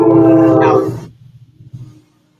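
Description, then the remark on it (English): A train sounds a loud, steady horn blast for about a second, followed by a low rumbling that pulses briefly and then fades into silence. No one speaks. “There's the train in the background.”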